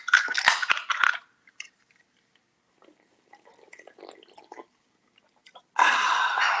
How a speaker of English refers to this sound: Go ahead and crack your can open and we'll take our first sip. Well, cheers to us. Cheers.